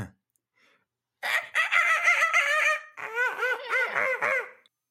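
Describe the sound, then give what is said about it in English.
A voice imitates dolphin cries: two long, loud, high-pitched squealing calls, the first a strained warble and the second bobbing rapidly up and down in pitch, with no talking. “Let me just say, it sounded like a bird, but you hear like kind of the cries of a dolphin.”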